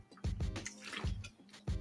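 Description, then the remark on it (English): Someone takes wet gulps of water, a few swallows spaced unevenly with soft liquid sounds in between and no talking. “So hold on, water.”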